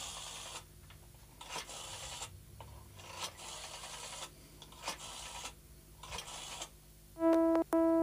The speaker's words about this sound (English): I'll get county headquarters for you. Ask the Chief Constable. Dialing's the easy bit.